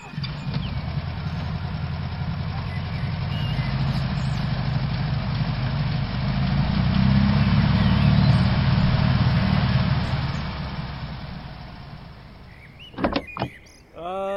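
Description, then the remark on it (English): A car engine idles with a steady low rumble that swells louder in the middle as the car is moved out of its spot, then fades, followed by a few short mechanical clunks near the end. “Maybe we should get the car out of there first, don't you think,”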